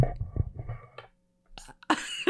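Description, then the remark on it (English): A deliberate, low, rumbling burp drawn out for about a second, followed after a short pause by a few harsh, breathy bursts like coughs or exhaled laughter. “but let me burp.”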